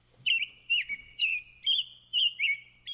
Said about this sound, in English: Now, I want to move in the direction of the birds in my backyard and that notion of contentedness, of happiness.